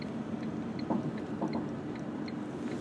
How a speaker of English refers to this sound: Listen to that. Ice on the windscreen. Oh, it's frosty.